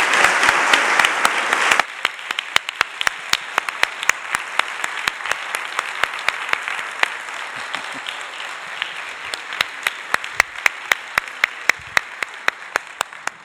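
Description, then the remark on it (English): A crowd applauds, dense and full at first, then thinning after a couple of seconds into scattered, sharper individual claps that continue steadily at moderate volume. “So, you think your applause might be enough, but it's not.”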